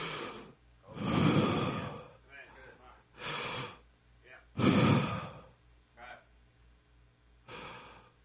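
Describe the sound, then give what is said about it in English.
A person breathes deeply and deliberately in and out, several loud breaths with soft airy gaps between them, and no talking. “She said, the linguistic said, that it would be the exact letters that Moses would pen to pen the action of breathing.”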